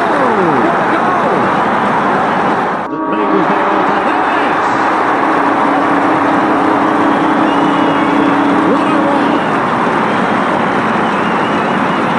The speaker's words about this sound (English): It is a fantastic sight and sound in football when the crowd goes up and roars at the end.